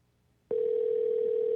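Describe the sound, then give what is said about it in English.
A steady electronic phone tone switches on abruptly after a brief quiet moment and holds at an even, moderate level, the ringing of an outgoing phone call to a Hardee's restaurant in Rogersville. No one speaks. “I didn't hear it ringing through the thing.”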